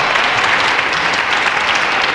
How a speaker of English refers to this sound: I thought I'd do her one special there, so that was my applause clip.